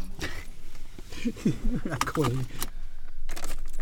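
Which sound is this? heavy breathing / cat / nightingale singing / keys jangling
keys jangling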